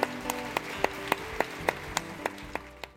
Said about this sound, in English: Would you join me in just offering applause to the Lord for salvation in this place?